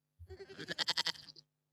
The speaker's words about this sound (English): All right, enough goat.